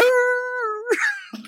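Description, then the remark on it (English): A person's voice imitates howling at the moon, giving a short, steady, drawn-out howl, like a wolf, held for nearly a second before breaking into a brief burst of noisier vocal sound. “They have to daub berry juice on their on their foreheads in the sign of a cross and howl at the moon.”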